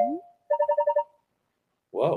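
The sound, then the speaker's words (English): A phone rings with one short burst of rapid, warbling electronic trills, clear, followed after a brief pause by a person starting to speak. “Where did that phone was ringing someplace?”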